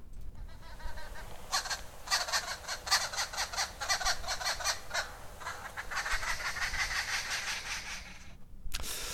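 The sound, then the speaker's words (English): A group of arrow-marked babblers cackles continuously, a rapid chattering of harsh, laughing notes in pulsing bursts that rise and fall over several seconds, with no talking. “It's like a just constantly little laughing sound going on, cackling away.”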